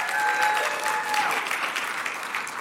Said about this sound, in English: But I feel especially moved when I think about the fact that all over the world, there are billions of people celebrating the resurrected Lord as well. So let's give Jesus a round of applause this morning.